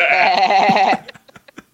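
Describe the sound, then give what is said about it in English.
A voice imitates a sheep's bleat with a loud, wavering "baa" held for about a second, followed by a few faint clicks and short murmurs. “You're all sheep. And … goes, bah.”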